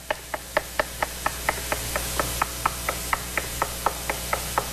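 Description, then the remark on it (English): A long, steady run of about twenty sharp, evenly spaced knocks, roughly four per second, with a constant low hum underneath and no voices. “So what does he do? He knocks.”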